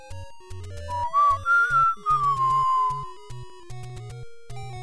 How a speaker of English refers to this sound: So we're going to go open up a dungeon here real quick. So go ahead and pull out your whistle.